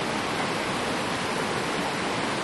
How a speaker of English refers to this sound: We'll keep the name of the river secret. So it's an anonymous alpine river.